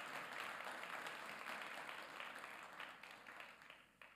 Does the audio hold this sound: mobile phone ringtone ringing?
no